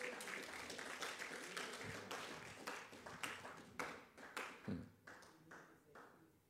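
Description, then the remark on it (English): A church audience claps in a dense, steady patter of many hands that gradually thins out, leaving a few louder, separate claps toward the end as the applause fades. “Oh, look at the way you are clapping.”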